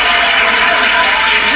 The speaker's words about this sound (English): Round of applause.